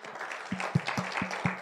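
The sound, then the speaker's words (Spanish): An audience applauds the Lord together, a dense wash of many hands clapping with steady, strong low beats pulsing about every quarter second underneath, like a drum or rhythmic accompaniment. “¿Cuántos dan fuerte aplauso al Señor?”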